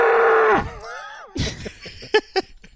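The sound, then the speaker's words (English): A loud, close animal call with a cow-like bellow: a steady moaning tone that bends into wavering, sliding notes, then several short, rough grunting bursts. No one speaks. “That was the copperhead. A snake cow.”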